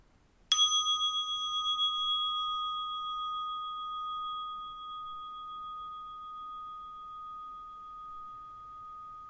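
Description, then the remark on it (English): A single meditation bell is struck once to mark the beginning of a meditation, ringing out clearly and then sustaining a long, pure tone that slowly fades over several seconds in otherwise quiet surroundings. “You will hear the sound of the bell to mark the beginning and the conclusion of the meditation.”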